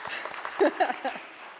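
A group claps briefly for someone in a quick, scattered patter of hand claps, with a few voices cheering or talking over the clapping.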